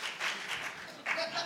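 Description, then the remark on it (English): An audience claps in a dense, steady patter of many hands, fairly loud throughout, with a slight swell partway through and a faint murmur of voices mixed in. “I was like, why are you clapping?”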